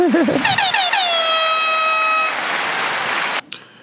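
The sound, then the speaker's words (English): A loud, blaring air horn sound effect: quick stuttering blasts give way to one long sustained honk, then a burst of noisy static, with a brief voice-like warble at the very start. “We definitely needed more sturdy air horn.”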